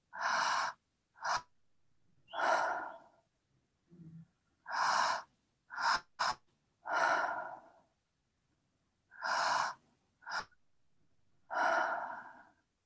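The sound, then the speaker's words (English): Three cycles of slow, deep guided breathing, each a long airy inhale followed by a sighing exhale with a brief catch of breath, quiet pauses between. “So we can feel the belly move, feel the chest move, and then on that exhale, just another few breaths like this.”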